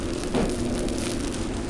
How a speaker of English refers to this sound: All right, so broccoli's just coming out of the oven right now. You can hear it's really sizzling and crispy.